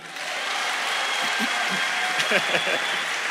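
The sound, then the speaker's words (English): A crowd claps steadily throughout, a dense wash of applause holding an even level, with a few voices calling out over it near the end, applauding the speaker after he says he is 52, during a talk on exercise. “Clap for me.”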